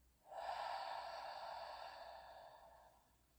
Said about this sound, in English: And once more, breathing in. And hold. And breathing out.